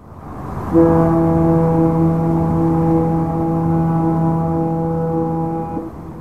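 A deep, sustained San Francisco Bay Area fog horn blast drones for about five seconds, its rich harmonic tone steady and loud over a low rumble of background noise, then cuts off.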